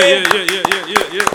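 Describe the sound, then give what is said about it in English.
Brief audience applause for battle rapper Geechee Gotti: roughly ten sharp, irregular hand claps, moderately loud, over a steady voice-like humming tone that holds beneath them the whole time. “Round of applause for my man, Geechee Gotti.”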